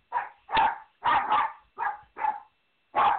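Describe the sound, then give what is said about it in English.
A dog barks repeatedly in short, loud bursts, about seven barks in quick irregular succession with a brief pause before the last one, with no one talking. “Dogs are acting crazy.”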